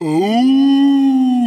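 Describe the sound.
A voice imitates a low wolf growl as the story character Little Chubby Wolf: a single loud, sustained throaty tone that swoops up briefly at the start, then holds steady for about a second and a half.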